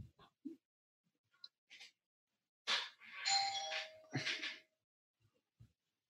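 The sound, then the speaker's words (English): A doorbell rings, a loud electronic chime with sustained ringing tones lasting a couple of seconds, preceded and followed by faint scattered clicks and knocks; three neighborhood children of about ten years old are at the door. “Hold on. Doorbell ring.”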